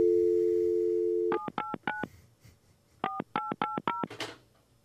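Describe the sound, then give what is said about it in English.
A steady telephone dial tone hums, then cuts off for eight quick touch-tone beeps in two groups of four with a short pause between as someone dials a phone number to call a man, ending in a brief burst of static. No one speaks. “And I want to call this guy because he gave me a very, very strange reply.”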